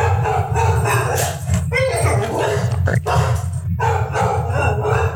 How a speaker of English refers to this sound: Hey, Rosie. Sorry, everyone, if I'm not able to completely cut out my dog barking at quite literally nothing.